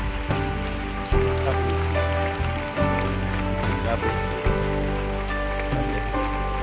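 A church audience claps steadily to encourage people coming forward to receive Jesus, the dense patter of many hands blending into a continuous wash over sustained musical chords, with no clear break for the whole stretch.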